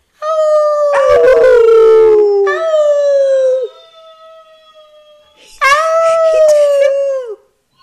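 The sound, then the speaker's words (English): A dog named Earl lets out two long, loud howls, the first stretching several seconds and wavering downward, then a brief pause before a second rising, mournful howl. “Can we get Earl cheers. To howl?”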